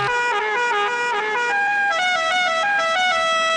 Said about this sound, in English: great moments in honking history. The horn that Rodney Dangerfield had in Caddyshack.